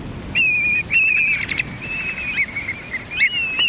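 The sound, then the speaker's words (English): Migrating shorebirds (sandpipers and plovers) calling: a series of thin, high, sustained whistled notes with slight wavering and quick upward flicks, repeating in short phrases over a soft, steady background hiss. “Millions of shorebirds, the sandpipers and plovers that grace our shorelines, are on the move.”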